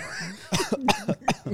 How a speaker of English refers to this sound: Ooh, from the chest right there. All right, I like it. More of a cough almost.